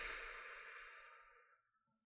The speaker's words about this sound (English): Take a deep breath in through your nose. Exhale it out through your mouth.